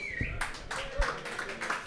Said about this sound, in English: Spirited applause.